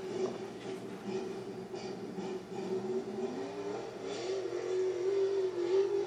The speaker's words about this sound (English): It's just rough, rutted out, and nasty. Sounds like you're having some engine issues, whoever you are, whoever went first.